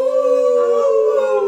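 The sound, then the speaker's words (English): A person imitates a wolf howl: one loud, sustained tone that holds steady and wavers slightly in pitch as it trails off, with no other sounds around it. “Wolf noise.”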